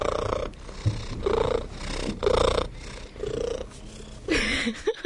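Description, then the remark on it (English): A cat purrs in steady rhythmic pulses, each breath carrying a whiny, high-pitched cry woven into the low rumble, giving the purr an insistent, pleading edge; the purr cats use when trying to get a person to do something. “And now this is the purr that cats use when they're trying to get you to do something.”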